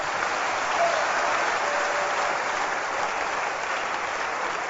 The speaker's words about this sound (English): Let's clap our hands for the men.